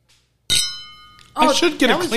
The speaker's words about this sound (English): Hear, hear. Cheers, everyone. Cheers. Get that on the mic. Clink. I did the plastic bottle and the water.